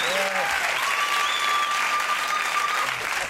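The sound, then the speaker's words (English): A studio audience applauds Chris Farley in a steady, dense wash of clapping that holds at a constant level throughout, with a few faint tonal whistles or cheers threading above it. “It's amazing to hear that crowd just love him, man.”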